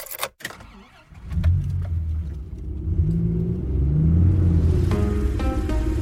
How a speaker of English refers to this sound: We'll shake the crumbs off our jacket and hop back into the car for a short drive through the city to our final resting point.